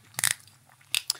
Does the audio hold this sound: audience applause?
no